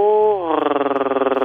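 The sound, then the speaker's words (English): A voice actor imitates a cat's purr: a short vocal tone slides down into a steady, rapid rumbling flutter, fairly loud, with no other talking. “There's my purr.”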